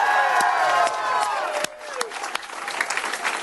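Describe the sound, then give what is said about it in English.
A large, excited crowd applauds steadily as a man stands at a podium, with cheers and whoops rising over the clapping, loud, the dense applause continuing throughout with scattered sharp claps standing out. “Applause being given to Tony Evers as he stands at the podium.”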